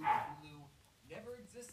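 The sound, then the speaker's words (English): A dog gives a short, sharp bark at the start, followed by a man talking. “Sorry about my dog and my mom.”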